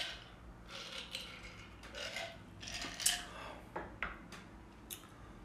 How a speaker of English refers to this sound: I'm just pouring it over ice, if you're wondering. You can probably hear that.